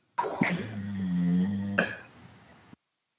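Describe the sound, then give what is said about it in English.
Charlie, a 175-pound yellow Labrador, snoring: one long, low, buzzing rumble on the inhale, then a sudden snort that trails into a softer, breathy exhale. No one speaks. “Who's snoring? Like a good sleep right there. That'd be my dog.”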